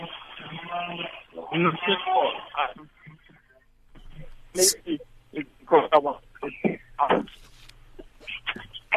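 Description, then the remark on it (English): Speech over a narrow, tinny phone line that keeps breaking up, with words chopped into fragments and sudden dropouts into near silence before the voice cuts back in. “You were sounding quite clear, and then all of a sudden there are cuts and interruptions.”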